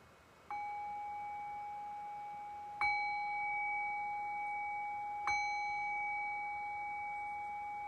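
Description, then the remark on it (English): A meditation bell is struck three times at slow, even intervals to close a guided meditation, each clear strike ringing out and sustaining so the tones overlap into a long shimmering hum. No voices are heard. “And I'll cue that by ringing the bell 3 times.”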